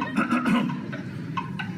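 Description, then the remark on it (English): A horse whinnies loudly, a shaky, quavering neigh lasting under two seconds with a couple of brief breathy calls trailing off at the end, with no talking. “Well, I am on a horse.”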